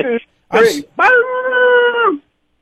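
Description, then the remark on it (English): A man imitates a wolf howl, holding one long, loud, steady note for about a second after a couple of short vocal bursts, then trailing off. It is a lone-wolf howl for a San Francisco pick. “He's a lone wolf. Let's hear that howl”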